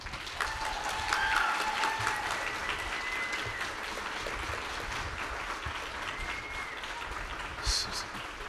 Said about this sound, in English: So we're gonna do a quick round of applause for all of the people that have been involved in making this happen. Let's thank them right now.